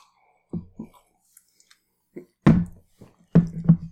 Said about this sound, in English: I hope clunking our glasses isn't too loud on the mic also. It definitely is.